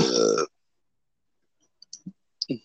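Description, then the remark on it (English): A single loud, rough burp erupts at the start and lasts about half a second, followed by silence and then a few faint clicks and brief murmurs. “It's got loud ass burps.”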